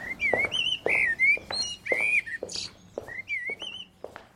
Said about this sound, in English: Firstly, if you come to the hospital and you walk up the main corridor, which most people do on arrival, you hear the sound of a blackbird going up the main corridor.